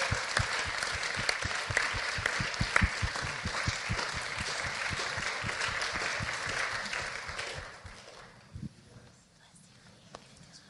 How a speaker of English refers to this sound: Let's just honor them with an applause.